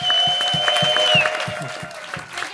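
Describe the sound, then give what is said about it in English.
An audience claps steadily for a comedian guest, with dense, crackling applause and a few whoops. A sustained high tone runs through it, gliding slightly downward partway along. “TJ, you can't call for order every time somebody's applauding.”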